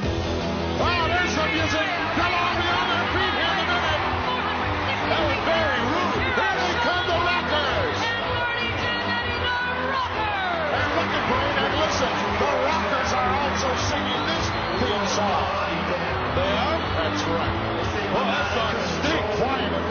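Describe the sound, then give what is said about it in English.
A wrestling arena crowd roars steadily for the whole stretch, a dense wash of cheering and scattered yells, with a man's commentary voice talking over the noise throughout, from the WWF Wrestling Challenge match The Rockers versus the Fabulous Rougeaus, May 21st, 1989. “Of course, you've got commentary and crowd noise over it, but still, it's there.”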